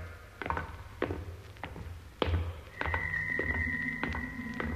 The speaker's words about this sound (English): It's the door. It's closing again.